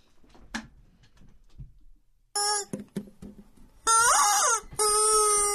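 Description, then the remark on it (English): A rubber chicken toy squeaks loudly on The Fitz Show, a short squawk followed by two long, wailing squeals with a bending pitch, after a few quiet clicks and rustles. “I've been really practicing on this, and since it's Friday, I think it's time for Rubber.”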